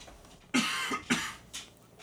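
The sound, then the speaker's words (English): Three quick coughs in a row from a person with allergies, the first two sharp and harsh, the last a bit softer, with no talking around them. “Apologizes for the cough, too.”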